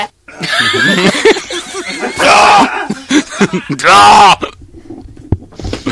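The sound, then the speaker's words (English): A man loudly clears his throat in a string of harsh, guttural hacks, with two longer rasping bursts that sound almost like grunting or oinking. “That's him clearing his throat.”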